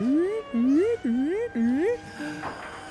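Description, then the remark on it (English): A voice imitates a loud alarm set off when a red button is pushed: four rising, whooping tones in steady succession, each sliding upward in pitch, followed by a softer, fading tail. “And as soon as he pushed that, a loud alarm started ringing.”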